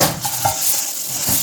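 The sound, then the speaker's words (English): Leftover cooked yellow rice for fried rice sizzles in a hot pan with onion, pepper, garlic and chicken while a utensil stirs and scrapes through it, giving a steady crackling hiss with soft, irregular scraping and shuffling bursts. “But I want to move it around so that the rice gets to heat up.”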